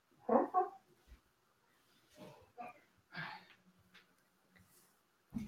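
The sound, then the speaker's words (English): A cat meows a few times outside an office, starting with two strong cries close together and followed by softer, scattered mews with pauses between. The sound is fairly quiet, with no talking. “I'm getting distracted by the cat meowing outside my office here.”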